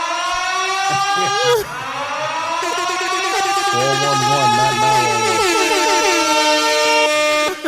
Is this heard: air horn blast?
yes